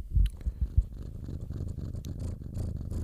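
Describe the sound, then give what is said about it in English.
A six-month-old orange house cat named Mango purrs steadily, a low rumbling vibration with a few soft thumps near the start, no voices present. “Maybe I can put my mic to him and you can hear his cute little purr.”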